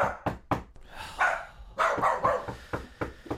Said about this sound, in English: Oh! Rigby, no! Stop barking!